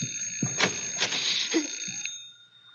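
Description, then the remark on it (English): An electric doorbell rings steadily with a bright metallic clatter, fairly loud, then cuts off near the end and leaves a short fading ring. “Because the doorbell is ringing.”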